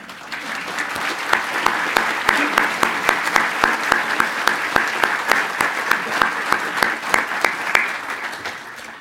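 Sustained applause from an audience fills the room, many hands clapping steadily and fairly loud for several seconds with a dense, crackling texture and no talking.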